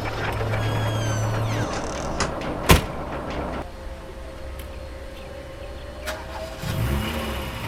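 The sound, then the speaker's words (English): A car door slams with a single sharp thud, followed by an engine cranking and starting, then a steady idle hum that swells briefly as it revs near the end. “Got in the car. How do I start it? Is there keys?”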